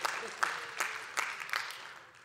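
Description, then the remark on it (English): An audience claps in a steady, dense patter with a few sharper swells, soft overall and tapering off toward the end, with no talking. “Okay, you can clap for me.”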